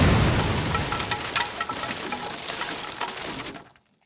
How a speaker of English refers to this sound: she managed to scream before the explosion drowned out all sound and shook the room.